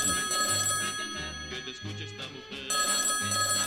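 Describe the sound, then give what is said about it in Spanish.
A telephone bell rings steadily and fairly loudly for the first incoming call to a radio phone-in, its bright metallic trill continuing with a brief dip in the middle before resuming. “Abrimos el teléfono, dando paso a la primera llamada.”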